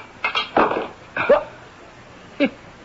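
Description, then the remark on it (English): A heavy metal wrench strikes a window pane several times and bounces off without cracking the glass. Each sharp knock is followed by a short ringing clank, with pauses between hits and no voices. “It bounced right off the window pane. Look, the glass isn't even cracked.”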